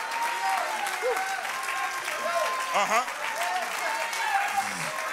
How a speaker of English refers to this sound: And I believe that God is in this house. And if you believe it, clap your hands unto the Lord.